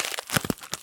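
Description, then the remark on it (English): Crinkly wrapping rustles and crackles in quick, irregular bursts as a package holding reed diffuser oil with rose, jasmine and violet dried petals is opened, a few louder crunches standing out. No one speaks. “Well, the one I just opened is self-love reed diffuser oil with rose, jasmine, and violet dried petals.”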